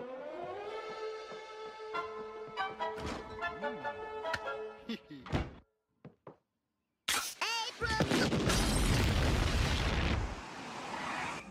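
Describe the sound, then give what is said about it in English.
A wailing, siren-like tone with scattered clatter gives way to a brief silence, then a loud explosion at the old Simpson place, two blocks away, erupts into a deep, roaring rumble lasting several seconds before cutting off. “That sounded like an explosion at the old Simpson place.”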